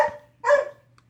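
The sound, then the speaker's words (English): A dog named Elvis barks twice in quick succession, a short bark and then a louder, fuller one, with a faint low hum underneath and no talking. “I'm sorry about Elvis in the last couple podcasts. The dog is...”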